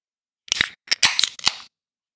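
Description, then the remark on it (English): A can of Victory Brewing's homegrown dry hopped lager (4.8% ABV) being opened: a quick cluster of sharp metallic clicks and short hissing bursts, about five in just over a second, loud and crisp with no talking. “And let's get it open and get it tried.”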